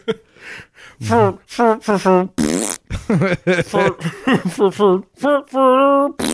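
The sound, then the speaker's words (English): A person blurts out a rapid string of loud, buzzy vocal fart imitations, a dozen or so short bursts with a few longer, wobbling ones and brief gaps between. “At this point, it's just hyphenated fart sounds.”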